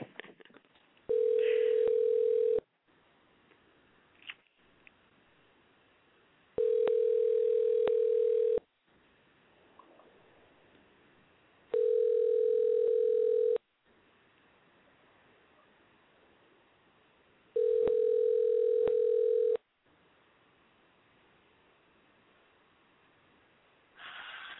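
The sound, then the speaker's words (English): A phone line rings out while a call connects after a phone number is entered: four long, steady ringback tones, each about two seconds, repeating at even intervals with quiet gaps between and no one talking. “Okay, so now I just put the phone number in and we're dialing Roger.”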